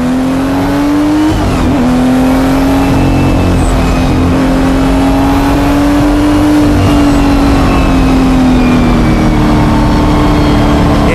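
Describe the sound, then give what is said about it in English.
A loud Porsche 935 race car engine roars at high revs, its pitch dipping with a gear change early on, then holding and slowly rising and falling in a sustained drone. “Drives the Newman Porsche 935”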